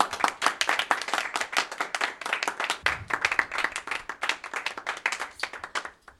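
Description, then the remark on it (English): An audience gives a round of applause welcoming the show's foley artist: many hands clapping in a dense, steady patter of sharp bursts that keeps up for several seconds before fading out at the end. “And now, please join me in a very respectful round of applause for our maestro, the man of a thousand sounds, the holy moly foley,”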